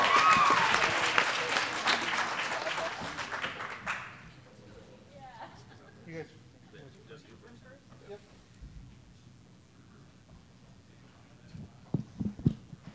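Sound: audience applause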